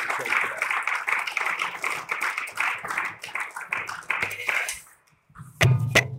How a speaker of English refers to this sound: Thank you, Bishop. Let's give him a hand clap of appreciation.